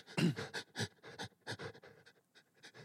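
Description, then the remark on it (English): A person pants in quick, rhythmic breaths, about ten sharp huffs in a row, working up to a fake sneeze that never comes. No talking. “So you get the breathing going, yeah.”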